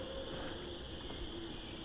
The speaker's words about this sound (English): Yeah, 2 great horned owls now. Both distant though. It's a male and a female great horned owl.